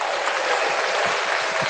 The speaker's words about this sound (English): Can we get an applause for the finalists, please? Can we get an applause for the fucking finalist?